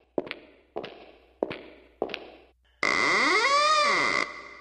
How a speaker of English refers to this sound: Oh, the door... Well, that was early. The doorbell has already rang. Let's go see who's at the door here.